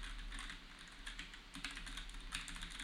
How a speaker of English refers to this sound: And just to up the ante a little bit, I'm going to just type.